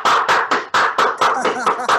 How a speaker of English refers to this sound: He's a man that claps for himself.